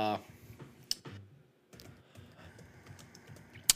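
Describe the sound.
Rapid, irregular clatter of typing on a computer keyboard, fairly close but soft, with a brief pause midway before the keystrokes resume; a voice is heard briefly at the start.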